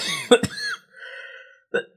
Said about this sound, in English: I'm about to cough.